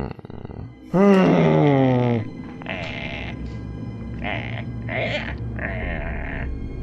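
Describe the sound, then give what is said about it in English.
A voice imitates a velociraptor: a loud, strained, bleating screech that slides downward in pitch, followed by four shorter, raspy hissing calls at uneven intervals. “That's a velociraptor sound.”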